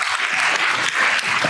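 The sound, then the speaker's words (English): Steady audience applause for doctors at a talk about cannabis, a dense wash of many hands clapping at an even, loud level throughout, with no voices standing out. “Give them a big round of applause, please.”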